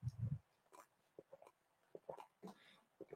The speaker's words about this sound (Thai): จิบน้ำสักนิดนึงครับ